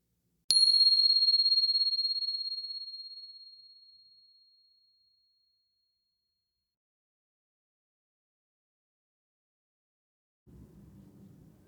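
A single high, clear bell strike rings out and slowly fades away over several seconds into silence, followed near the end by a faint low rumble.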